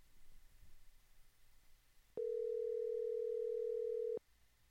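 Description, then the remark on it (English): A telephone dial tone as a speed-dial call is placed to a helicopter company hums steadily at a single mid pitch for about two seconds, then cuts off abruptly, with faint low background noise before and after. “I have them on speed dial. I'll call.”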